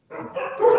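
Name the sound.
dog barking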